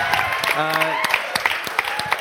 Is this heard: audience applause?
yes